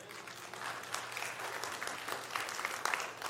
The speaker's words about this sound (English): Since I said that clapping thing, you're all hesitant now.